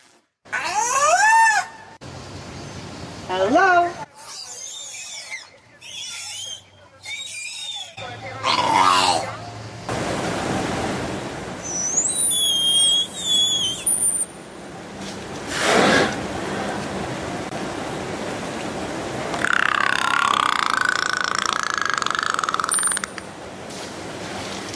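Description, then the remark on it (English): A killer whale mimics the word hello: squeaky, warbling calls in short bursts, then high whistles and a buzzy, nasal cry over a steady wash of watery background noise. “So killer whales can say hello.”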